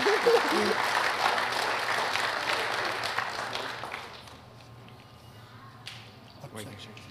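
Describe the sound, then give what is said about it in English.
A crowd applauds at a certificate award ceremony with dense, steady clapping for about four seconds, then it quickly dies away, leaving a low hum and a few scattered sounds. “I just ask if you can applaud after everyone's been awarded the certificates, please.”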